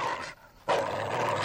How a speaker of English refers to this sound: Dog nipping at my heels!